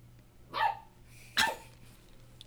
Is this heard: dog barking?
yes